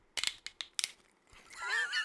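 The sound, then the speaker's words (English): A bottle being cracked open: a quick series of four or five sharp, crunchy snaps, then a steadier fizzing, bubbling sound with some higher squeaky tones. No talking. “What a cork pop. All of these are still cracks.”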